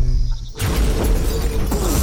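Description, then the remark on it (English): A low humming drone cuts off as a sudden, loud roaring blast bursts in, a sustained crashing rumble with a second sharp impact near the end, as a magic fireball blows down a door. “I can blow down doors with a fireball.”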